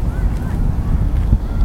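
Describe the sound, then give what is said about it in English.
Wind buffets a microphone outdoors, producing a steady, loud low rumble with uneven gusty surges throughout the short stretch and no clear voices. “It's a little windy out here today, so I'm going to go find a less windy area.”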